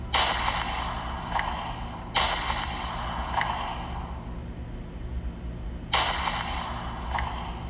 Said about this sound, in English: And all we hear is vehicles pulling up to a stop, and we hear gunshots.